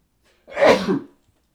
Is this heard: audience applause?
no